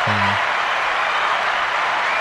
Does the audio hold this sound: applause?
yes